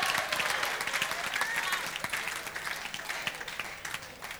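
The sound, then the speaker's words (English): An audience in a church claps in a steady, dense wash of applause, many hands overlapping without a clear rhythm, with faint voices mixed underneath, holding fairly even loudness throughout. “Clap.”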